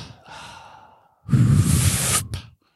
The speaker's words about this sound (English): Deep breathing. into the nose, out to the mouth.